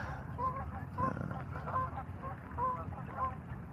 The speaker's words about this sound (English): Are you talking about like in the geese coming through some more? They're just everywhere today.